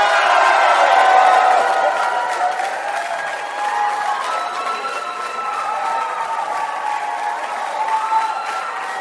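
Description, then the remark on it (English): A crowd claps and cheers steadily for several seconds, a dense wash of applause with shouting voices and whoops rising over it, loud throughout and easing only slightly toward the end. “Why are you clapping? Because we have clapped.”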